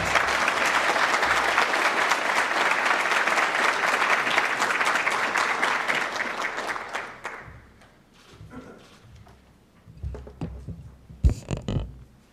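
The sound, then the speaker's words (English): Warm applause from an audience in Washington, D.C., welcoming Minister Kono to the podium for his presentation, a dense, steady wash of many hands clapping for about seven seconds before tapering off, followed by a few scattered shuffles and soft knocks. “So could I ask you, with your very warm applause, please welcome to this podium for his presentation, Minister Kono-san, please.”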